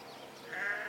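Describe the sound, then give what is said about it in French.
A goat bleats in one drawn-out, wavering call that swells louder partway through, with no talking. “Souvent, une chèvre qui a faim ou soif n'arrêtera pas de beuler.”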